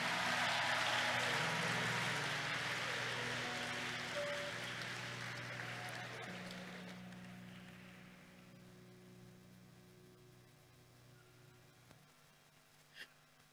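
An audience claps their hands in a dense, steady wash of applause that starts loud and gradually fades out over several seconds, leaving a low steady hum underneath.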